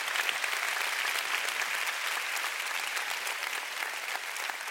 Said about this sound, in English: Why don't we give the Lord a big clap? What a great story.